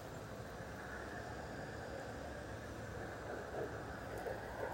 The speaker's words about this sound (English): The other thing is, the noises are so different now. You'll be able to hear, no doubt, the traffic in the background.